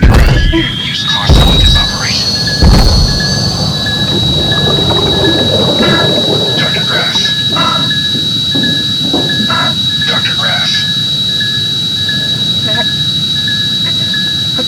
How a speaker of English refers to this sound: The suit is equipped with a cutting torch, a drill, a metal cutting saw. Give me the torch or the saw! Activating your suit's metal saw.